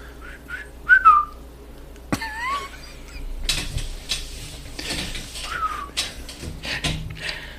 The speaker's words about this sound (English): Wasn't the greatest whistle.